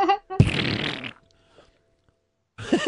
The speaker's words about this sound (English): I love those farts in my face. Give me those farts, white guy farts. Give me those farts, those white guy farts. Love those farts in my face.